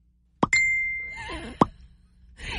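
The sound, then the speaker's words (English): A Messenger app notification chime sounds on a man's phone, with two quick bubbly pops and a short ringing tone between them, clear, followed by a fainter trailing blip. “That is the messenger itself.”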